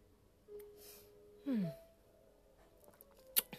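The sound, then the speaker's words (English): Someone takes a quiet sip of a drink. A short breathy slurp and swallow is followed by a soft exhale, then a sharp little click near the end of an otherwise hushed moment. “I'm going to have myself a nice little sip.”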